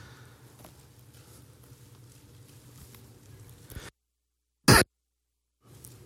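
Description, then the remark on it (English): A single sharp, loud cough from a person with a lingering cough of several weeks bursts out of a sudden silence, preceded and followed by a low, steady hum with no talking. “I've been struggling with the lamest, longest cough week after week.”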